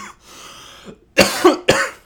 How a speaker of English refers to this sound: Excuse the cough. I have COVID right now.